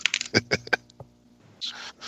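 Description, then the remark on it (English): A wedding ring clatters onto a keyboard in a quick run of sharp, bright clicks and taps, settling in about a second, followed by a soft breathy rustle. “Yeah, yeah, and then I dropped my wedding ring on my keyboard, and then we made this noise.”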